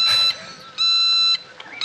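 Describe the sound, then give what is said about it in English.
A shrill electronic phone ringtone: a harsh, buzzy high-pitched tone sounding in short loud bursts, one brief, then a longer sustained blast, with another starting at the end. “Here is an annoying... world's most annoying ringtone. This is his phone.”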